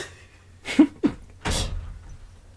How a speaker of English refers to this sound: Let me close that door.